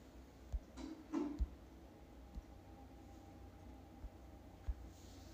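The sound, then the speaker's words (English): Someone tries to open a door: a few scattered knocks and clicks, with a brief rattling cluster near the start, quiet against a steady low background hum and no voices. “They're trying to open the door.”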